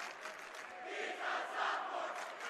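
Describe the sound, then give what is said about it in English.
A large crowd of students at a basketball game between Miller North and Gretna roars and chants together in a sustained, loud wash of voices that swells slightly in the middle, with no single voice standing out. “What you hear behind me from the students is true.”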